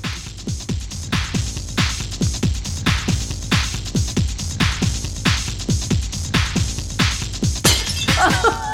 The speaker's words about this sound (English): And there's a lot of glass smashing in that one.